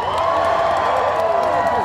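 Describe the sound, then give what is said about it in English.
A large crowd at the March for Science in Washington, D.C., applauds and cheers outdoors in the rain, with dense steady clapping and scattered whoops and shouts rising over a continuous wash of noise, loud throughout. “Have a big round of applause for staying with us through this rain.”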